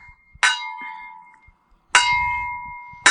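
A bell is struck three times at uneven intervals, each sharp clang followed by a bright, sustained ring that slowly fades; fairly loud, with no voices.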